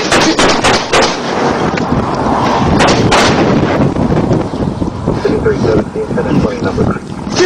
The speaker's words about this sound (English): Shots fired! 5326, shots fired!